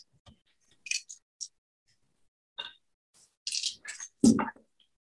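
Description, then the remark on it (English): Dice clatter in a few short bursts, then a longer rattling tumble near the end, moderately loud, with quiet gaps between and no voices, as a player rolls dice, including stress dice, for a heavy machinery roll in a game. “give me a heavy machinery roll, and you get to add an extra dice because Dr.”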